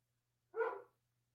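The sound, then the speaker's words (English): A single short bark from the speaker's dog, clear, rising sharply and fading quickly, with a faint low hum underneath and silence before and after. “My dog thinks so too.”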